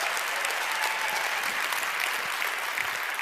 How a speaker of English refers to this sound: So let's give them a big round of applause, ladies and gentlemen. Huge round of applause.